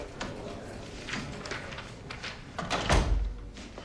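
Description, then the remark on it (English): A door swings closed with a solid thud near the end, preceded by a few soft clicks and shuffling sounds. “Shut the door.”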